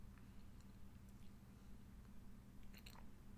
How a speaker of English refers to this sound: You heard my slurping? Slurp, slurp.